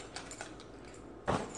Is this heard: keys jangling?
yes